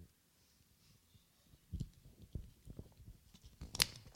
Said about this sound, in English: Please excuse me while I drink some water. Thank you very much.